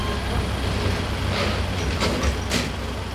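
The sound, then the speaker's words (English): A delivery truck full of fish idles and rolls in outside Annaka with a loud, steady low engine rumble, broken by a few short airy hisses like brakes releasing. No one speaks. “I'm standing outside Annaka with Niki when a truck pulls up full of fish.”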